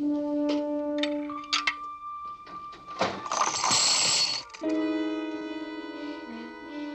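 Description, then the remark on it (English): Mr. Schoolfield's coffee machine runs with steady electronic humming tones and clicks, breaks into a loud hissing, whirring burst for over a second, then settles back into layered humming tones. No one speaks. “I say, has anyone tried Mr. Schoolfield's coffee machine?”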